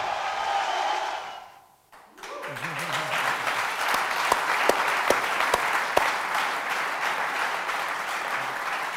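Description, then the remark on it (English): After a brief lull, a large crowd bursts into loud, sustained applause, yelling "Sergio" and cheering, sharp individual claps popping out above the steady roar. “They're yelling Sergio.”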